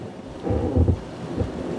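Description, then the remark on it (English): A boat moving on water: a steady low rumble with washing, splashing noise that swells briefly in the middle before settling back, with no voices. “We're back on the water.”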